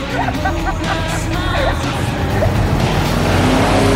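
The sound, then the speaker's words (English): The powerful engine of a custom-made Dodge Challenger roars loudly and steadily as it drives at speed, its deep rumble holding for several seconds with faint tire noise and some background commotion. “This is a custom-made Dodge Challenger. If it hits you with speed, it will mess you up real bad.”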